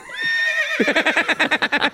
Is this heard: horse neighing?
yes